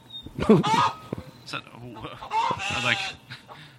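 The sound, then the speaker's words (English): Someone imitates a chicken with exaggerated clucks and crowing squawks, loud, in two bursts with short pauses between them. “Chicken's coming to get”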